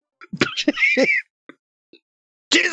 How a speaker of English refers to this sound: Bless you.